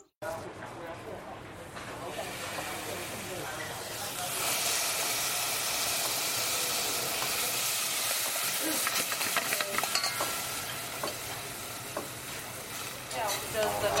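Food sizzles steadily in a hot pan, a bright, crackling hiss that swells louder about four seconds in and keeps popping and spitting to the end.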